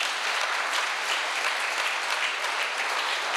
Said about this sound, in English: Can we give them a big round of applause, please?